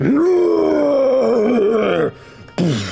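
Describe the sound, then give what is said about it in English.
A loud, drawn-out monster roar, rough and groaning, holds for about two seconds and sags slightly in pitch, then cuts off; after a short silence a second harsh roar bursts in. “Right at this point, you hear this earth shattering roar from out of nowhere.”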